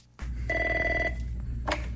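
A telephone rings in one short electronic burst of about half a second, fairly loud over a steady low background hum, with no one speaking.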